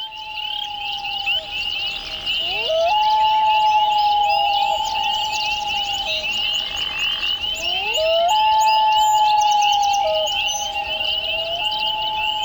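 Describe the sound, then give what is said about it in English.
Two long, wavering common loon calls at Echo Pond in the Adirondacks that swoop upward and hold a steady, mournful tone, set against a constant high-pitched chorus of frogs or insects. “Boy, those loons sound ethereal. It's one of the most haunting sounds on the planet.”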